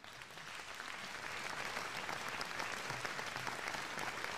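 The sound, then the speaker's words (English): A crowd applauds steadily, the dense patter of many hands clapping at once, fairly loud and sustained without pause for several seconds, with no voices standing out. “Everyone is literally clapping for everyone but me.”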